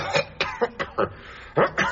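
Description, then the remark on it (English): A rapid coughing fit from influenza during a jury trial, roughly seven harsh, hacking bursts in quick succession, fairly loud, with no talking around them. “Only by using my throat spray, handkerchiefs and a packet of cough drops could I distract the jury from the evidence that otherwise might appear to put Charlie at the scene of the crime.”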